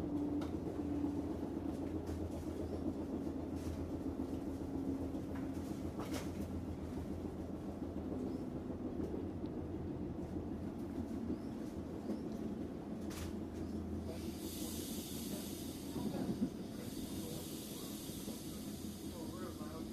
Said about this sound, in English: But I will just let this ambient train noise record for a minute so I can overdub it later.